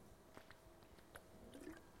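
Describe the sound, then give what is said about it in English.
Someone quietly sips a drink of water, with a few soft, wet mouth sounds and small gulps spread over a couple of seconds. Nobody speaks. “I'm just going to take some water.”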